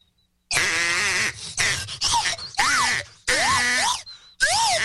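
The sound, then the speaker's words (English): A slide whistle and a duck call are played together in loud, buzzy, honking bursts, about six in a row, with the pitch swooping up and down through each one. No one speaks. “Well, I can do the slide whistle duck call.”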